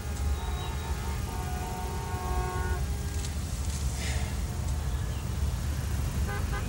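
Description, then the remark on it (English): Several car horns blare together in a long, steady chord for about three seconds over a constant low rumble of idling traffic, with another short honk near the end. “You're blaming me for the traffic?”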